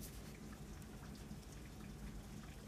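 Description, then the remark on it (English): Steady rain falls continuously, a dense hiss of drops with faint low rumbling underneath, even and unbroken throughout with no voices. “Can you hear the rain?”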